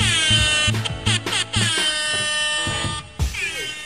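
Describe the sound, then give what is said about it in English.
A loud, close air horn blares in several sustained blasts with short breaks between them, with a harsh, buzzing tone and no talking. “But that, of course, on the air horn is my guest today”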